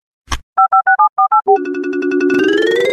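A sharp click, then six quick keypad beeps on a flip phone as messages are checked, followed by a steady, loud phone tone that holds and begins rising in pitch near the end. No talking.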